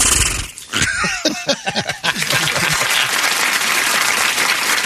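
A voice mimics a startled crowd reaction with a quick run of yelping, gasping vocal bursts, then a steady loud wash of noise like cheering and applause fills the rest.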